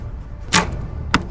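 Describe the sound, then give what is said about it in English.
An archer's arrow is released with a sharp whoosh, followed about half a second later by a crisp thud as it strikes the bullseye of a target, clear against a quiet outdoor background. “I stand with an open stance, draw back my arrow, and aim.”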